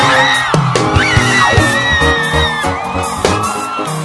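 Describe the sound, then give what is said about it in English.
Several people shout and whoop excitedly together, loud, with overlapping cheers, a few sharp bangs and claps, and a sustained raucous din throughout. “Here, we shall be having 4 cars, but we are shouting!”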